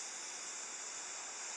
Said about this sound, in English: This is my trip to the beach. It's so nice out here. You can hear the waves crashing on the sand and on the shore. Just take a listen.